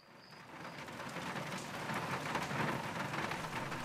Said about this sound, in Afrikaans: Oh, hoor hoe stortreen dit.